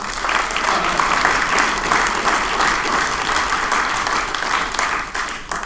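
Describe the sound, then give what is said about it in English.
A comedy show audience applauds the comics steadily for several seconds, a dense, loud wash of many hands clapping at once with no voices standing out, tapering only slightly at the end. “Let's give it up one more time for the comics, everybody.”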